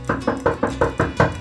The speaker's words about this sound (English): Don Diego was interrupted by a frightful knocking at the mansion's front door.